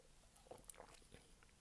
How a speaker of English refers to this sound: Let me have a sip of my coffee.